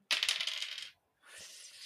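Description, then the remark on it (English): Blue dice, rolled for a role-playing game check, clatter and tumble across a hard tabletop in a quick rattling burst, pause briefly, then a second, softer stretch of rolling follows. Fairly loud, with no voices. “you're going to have to make an act under pressure roll to take control of the vehicle because it is on ice and it is not meant to be on ice.”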